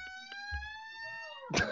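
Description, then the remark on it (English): A cat yowls at a door: one long, drawn-out yowl that slowly sinks in pitch, fairly steady, before a brief rough noisy burst cuts in at the end. “God damn it, cat. It's a shop. The cat wants to weigh in.”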